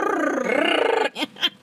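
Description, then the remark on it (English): A person imitates a small dog's growl with a rough, rolling vocal snarl lasting about a second, followed by two short breathy bursts, close and fairly loud with no other talk. “It's so, like my dog, like my chihuahua.”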